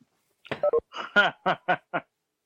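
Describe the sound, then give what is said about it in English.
A quick run of about six or seven short electronic call beeps at shifting pitches, like a conference-line tone as someone drops off, sounding alone with no talking. “I heard the beep. I think the Riddler rejoined.”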